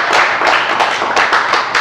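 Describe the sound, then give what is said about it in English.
An audience at a Sunday Night Local church teaching session claps steadily to welcome a speaker, a dense, continuous patter of many hands with brief sharper accents, fairly loud and with no voices over it. “I believe we're legally allowed to clap, so let's give him a clap of you welcome.”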